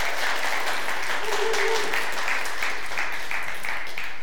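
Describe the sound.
An audience at Real Life church applauds steadily as a new small group leader comes forward to the stage to be commissioned, a dense, continuous wash of many hands clapping at an even, loud level, with a brief murmur of voices rising faintly beneath it partway through.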